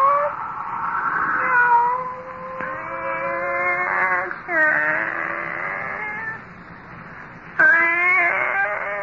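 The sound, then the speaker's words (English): A pet cat named Kitty meows repeatedly in long, drawn-out, wavering calls, fairly loud, with only brief pauses between them and no talking. “It's you, Kitty. Barbara's pet.”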